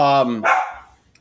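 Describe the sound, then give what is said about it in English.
A single sharp, loud dog bark with a strong harmonic yelp that drops quickly into a short breathy tail and then quiet. “Your dog agrees.”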